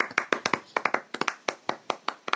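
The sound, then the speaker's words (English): Hands clap in applause for Phil Spencer, a quick, steady run of sharp, crisp claps, about a dozen and a half in a couple of seconds, with no talking over them. “Applauding Phil Spencer.”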